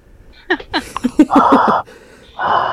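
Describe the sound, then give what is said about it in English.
Heavy breathing into a microphone: a few short voiced gasps, then a long rushing exhale and another starting near the end, loud and breathy with no words. “Who is breathing into their mic?”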